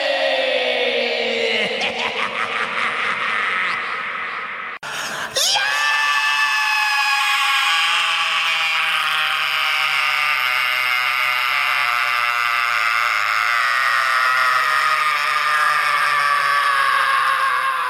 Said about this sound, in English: So two albums apart, two screams. They're both great. But …'s better.